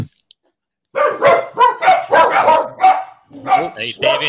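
animal, dog barking

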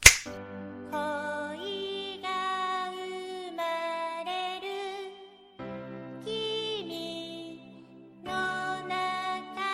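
human body sound, finger snap

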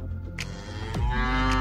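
animal, cattle mooing

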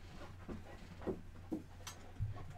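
animal, dog panting

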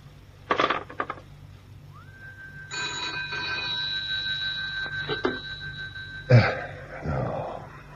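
household object, telephone bell ringing

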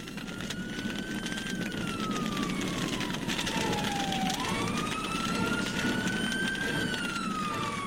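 vehicle, fire engine siren

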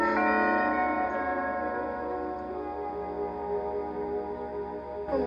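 household object, doorbell ringing

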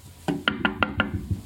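sound effect, knocking on a door

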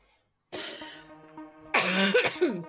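human body sound, throat clearing

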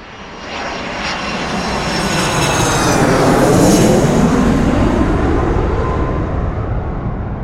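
vehicle, airplane landing

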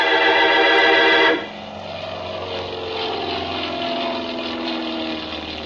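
vehicle, airplane engines

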